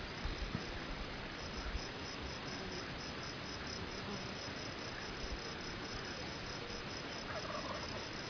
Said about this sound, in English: That bird up there on the hill, I think, is a Jake. Got a big gobble on him, though, doesn't he?